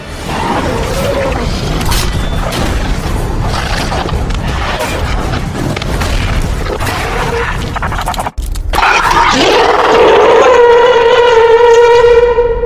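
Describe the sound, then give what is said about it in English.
A loud, steady electronic alarm, the crab alarm, starts after several seconds of harsh, crackling noise and a brief cutout. It settles into a sustained, buzzy, mid-pitched tone that holds to the end. “The crab alarm's just gone off again.”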